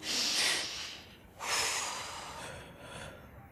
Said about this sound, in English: Yes, but you're doing Lamas. Are you giving birth? If you're upset, long, deep breaths.